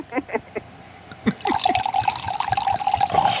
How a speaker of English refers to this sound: let me pour for Robin. See, you have to give it to me to pour so I can get the sounds